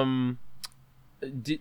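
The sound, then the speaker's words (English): A voice imitates a zombie with a droning vocal tone followed by a few sharp mouth clicks, some layered over throaty, gurgling vocal sounds, fairly loud. “I like to shamble around and make clicking sounds.”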